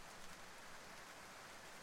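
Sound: rain falling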